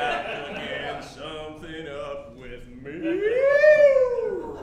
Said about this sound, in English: That dog can sing.